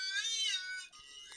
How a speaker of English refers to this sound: Yeah, sorry, there's emergency services vehicles just flying past. Oh, God, there's another one. Oh, no, it's clearly been a terrible accident. Oh, God, here's one more.